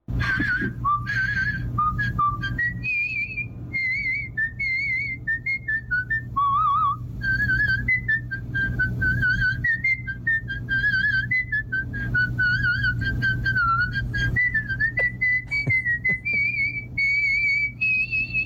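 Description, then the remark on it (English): A man whistles a continuous melody for the whole stretch, the pitch wandering up and down through a lively tune, fairly loud over a steady low background hum. “Told us he can't whistle.”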